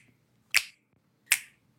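Two crisp finger snaps, about three-quarters of a second apart, each a sharp bright click with a quick decay, standing alone against near silence.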